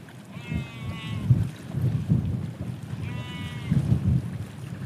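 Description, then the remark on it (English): Sheep bleat twice, each a wavering call lasting about a second, in a mountain valley by a glacial lake, over a steady low rumble of wind in open country. “But you just can't beat this, just standing in a valley here. Sheep, mountains, this glacial lake, which I'm going to get down to here now.”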